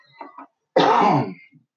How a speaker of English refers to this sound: Excuse me, I got a cough.